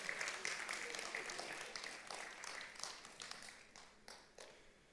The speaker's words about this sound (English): I know you don't know who it was, but should we give a clap and welcome this guy into the family of God? Welcome this morning. Come on, a better one than that. Sounds like a slow hand clap.